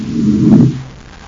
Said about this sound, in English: Buzz sets the Terra 5 down on the surface of the moon.